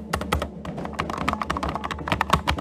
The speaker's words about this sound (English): Alright, types in the password. Alright, typed in the password for 5 doors.